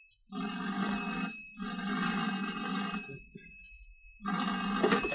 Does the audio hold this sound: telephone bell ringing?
yes